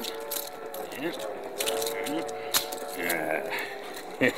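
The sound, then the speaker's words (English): Metal keys jangle and clink in short bursts as handcuffs are unlocked, with a sharp click near the end as the lock works loose, some faint background voices underneath. “Let me get my keys.”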